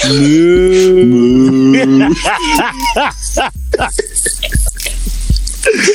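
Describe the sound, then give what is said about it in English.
A loud, drawn-out cow moo holds steady for about two seconds, then gives way to choppy voices and clattering sounds that continue to the end. “I'm a cow.”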